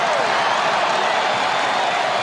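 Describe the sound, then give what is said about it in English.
A dense, steady roar of a large stadium crowd standing, clapping and cheering as a player strolls past them, loud and continuous with no breaks, the broad wash of noise filling the whole moment. “They stand and applaud as he strolls past these fans.”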